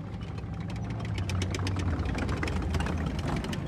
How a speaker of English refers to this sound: Claire held the phone up to her window so he could hear the German tanks for himself.